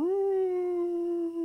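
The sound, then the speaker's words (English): A single wolf howl from off in the distance at night, held as one long, steady mournful note after a slight rise in pitch, sounding clearly on its own with no talking. “And night falls, and right like a little bit, maybe like an hour after night falls, you all hear a howl. It sounds like a wolf howl.”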